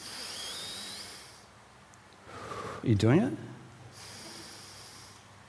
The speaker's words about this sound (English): The Buddha, Siddhartha Gautama Buddha, taught two kinds of meditation. One is in-out breathing. Can you do it with me?